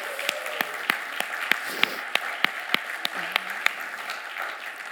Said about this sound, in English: Let's give our helpers a round of applause.